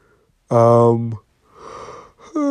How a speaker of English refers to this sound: Sorry, guys. I'm yawning.